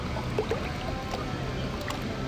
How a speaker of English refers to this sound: You guys hear that? The water crashing. The palm trees dancing.